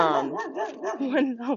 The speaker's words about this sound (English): When I launched Unstoppable, oh, sorry, there's a dog right now.